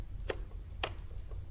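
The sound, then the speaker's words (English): Metronome ticking: a couple of sharp, crisp clicks about half a second apart, with fainter ticks in between, fairly quiet over a low background hum. “with the help of the metronome”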